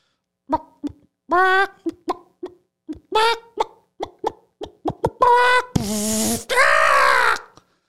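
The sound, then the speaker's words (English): A person vocally imitates a chicken being electrocuted, with a burst of short clucks and squawks building to two long, harsh, buzzing screeches, loud, with no talking. “A chicken being electrocuted.”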